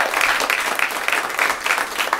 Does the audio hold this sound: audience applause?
yes